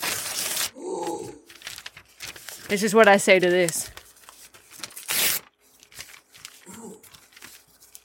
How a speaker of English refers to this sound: I have a list of regulars from the committee, and here, you hear this? You hear this, folks? Yeah, I hear the rustling of your papers.